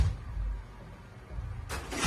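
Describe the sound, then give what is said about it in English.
A low mechanical hum and rumble, then a sudden loud burst of clattering noise near the end as a Spot robot pushes a door open. No one speaks. “He knows how to open door.”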